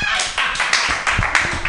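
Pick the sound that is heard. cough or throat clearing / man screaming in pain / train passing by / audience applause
audience applause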